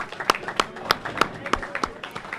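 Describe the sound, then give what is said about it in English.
Short burst of applause: sharp, evenly spaced handclaps, roughly three per second, over a low background murmur, like one or a few people clapping steadily. “Let's give him a round of applause before I end this show, guys.”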